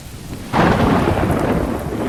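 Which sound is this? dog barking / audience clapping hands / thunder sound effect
thunder sound effect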